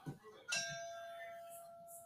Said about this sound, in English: The bell tolls 29 times for the 29 lives lost on the ground.